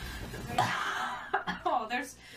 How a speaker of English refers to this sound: Sorry, I'm dying over here. No, this literally, take a shot every time we cough, guys. Like, we're so sorry.